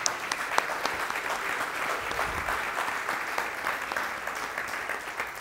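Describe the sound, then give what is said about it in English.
An audience claps together in a dense, sustained burst of applause, giving God a hand clap, many hands blending into a steady wash of sound with a few sharper individual claps standing out, lasting several seconds without talk. “Give God a hand clap.”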